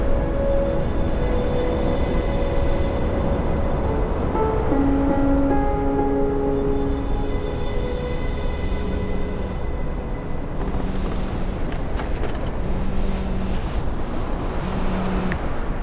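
A steady, full roar of ocean waves washing onto shore fills the scene without pause, with faint sustained humming tones drifting underneath and no voices.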